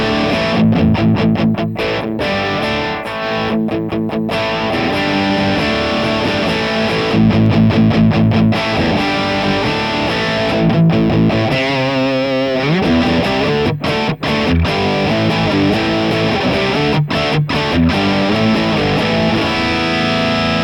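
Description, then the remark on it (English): A loud, overdriven electric guitar plays crunchy chords and riffs through an amp's vintage channel, with choppy rhythmic stops and some warbling effect midway. Nobody speaks. “That's a great sounding channel. Yeah, it's pretty rock and roll.”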